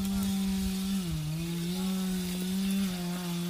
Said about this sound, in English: Is it chainsaws? Is it handsaws? In some areas where it's sort of, it's not that steep, they use chainsaws.